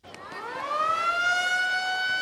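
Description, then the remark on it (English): A school siren in Durán, Ecuador, winds up from a low pitch into a loud, steady wail that holds for a couple of seconds, clear, with no talking, signaling the end of recess. “That's the school siren. Recess is now over, and students line up in the school patio here in Durán, a tough town across the river from Ecuador's large Pacific port city, Guayaquil.”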